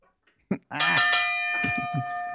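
A bell rings out clear, struck once and then again right after, its bright tone sustaining through to the end while people talk briefly beneath it.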